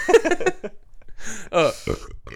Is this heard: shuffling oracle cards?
no